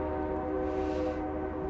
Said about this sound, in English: And there goes that train.